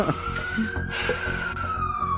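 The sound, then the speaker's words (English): An ambulance siren wails with a steady, slowly bending high tone over a low engine rumble, loud, with no voices, as the ambulance stops in front of a house. “I woke up after hearing the sirens of the ambulance stop in front of my house.”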